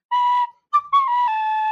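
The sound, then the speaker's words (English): A few bright tin whistle notes play alone, one held tone, a short squeaky chirp, then a longer sustained note that wavers slightly in pitch. “Oops, a little squeaky there. Well, we got the tin whistle working again, so the show's back on track, everybody.”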